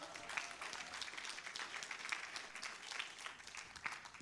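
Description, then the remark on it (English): A crowd applauds steadily, many hands clapping in a dense, continuous patter that stays fairly even in loudness throughout, with no one speaking over it. “Applaud and I'll take a drink.”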